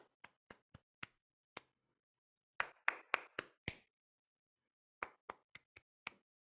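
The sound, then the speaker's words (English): Sharp hand claps tap out a rhythm in three short bursts: a spaced run of five, a quicker cluster, then five more matching the opening. They are crisp and unaccompanied, with no voices. A music teacher claps a pattern for students to echo back. “I'll clap something and then they echo.”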